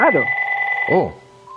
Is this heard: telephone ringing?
yes